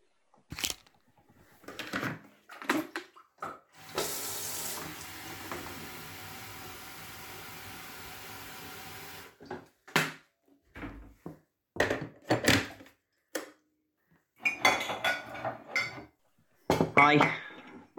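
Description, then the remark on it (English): Kitchen clatter of crockery and metal clinks, then a steady rush of water filling a kettle for several seconds, followed by knocks and clunks as it's set down and switched on. “I'll put the kettle on.”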